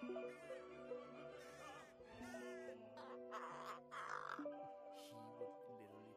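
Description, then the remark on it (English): A man's pet crow caws a few times in harsh, raspy bursts over steady background music, sounding slightly tinny, like playback from a phone. “Here's a man that has a pet crow, has coffee with him every morning.”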